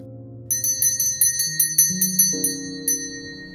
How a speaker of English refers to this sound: I always know it's time when Lorna rings the bell.